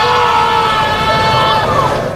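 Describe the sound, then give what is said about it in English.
A spectator in a golf gallery yells a loud, drawn-out Chewbacca-style Wookiee roar, a human voice imitating the creature with a wavering, high-pitched tone held for about two seconds, with another spectator chiming in to harmonize, over steady background noise. “stupid things people have yelled from the gallery”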